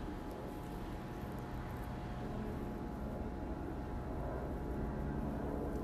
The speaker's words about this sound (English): Yeah, there's that other helicopter. Don't know who they're looking for. Don't know who they're looking for.